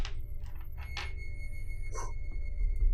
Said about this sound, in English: need one of you on the survivor side to roll a d20, and then Dalton, I need you to roll a D20